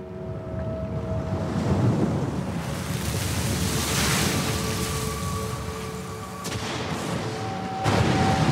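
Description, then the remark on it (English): A stormy squall over a lake: steady roaring wind and churning waves fill the scene, with a couple of sharp bursts that could be thunder near the end. No one speaks. “A squall came down on the lake, so that the boat was being swamped, and they were in great danger.”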